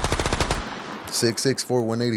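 A gunshot sound effect: a rapid burst of about eight or nine gunshots fires in quick succession, loud, then stops; a voice follows shortly after.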